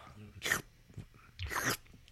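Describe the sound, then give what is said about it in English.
Wet eating sounds: two quick noisy gulps about a second apart, someone swallowing a sandwich without chewing, with faint mouth noises and breathing between them. “Not even chewing. Just no.”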